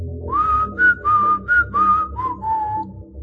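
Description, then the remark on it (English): A person whistles a lizard's call, a short call of about six clear, steady notes, a few rising or gliding, fairly loud with no talking. The last notes are softer and lower. “as he lifted his hoofs, she whistled the lizard's call.”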